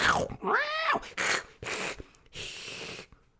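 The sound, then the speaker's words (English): A voice imitating a cat: a whining, meow-like cry rises and falls, followed by three or four short, raspy growling bursts, fairly loud, separated by brief pauses. “Growl, growl, growl, growl.”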